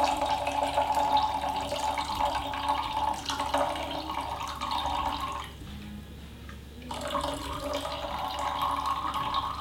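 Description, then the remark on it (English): Coffee is poured steadily, a continuous splashing trickle that pauses briefly partway through before resuming. No one speaks. “Sorry, excuse the silence while I'm pouring coffee.”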